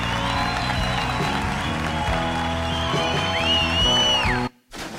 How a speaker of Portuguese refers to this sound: Senhoras e senhores, recebam com uma salva de palmas ele, que é da Turma do Fundão desde 81